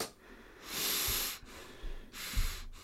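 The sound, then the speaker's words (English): Two loud, heavy breaths, each a long rushing, airy gust with a brief pause between them, forceful and intense, like labored respirator-style breathing, with no talking. “You were breathing really intensely. Like, you suddenly became Darth Vader.”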